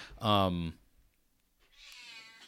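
A cat lets out a loud meow that slides downward in pitch, then a fainter, higher-pitched mewing follows after a short pause.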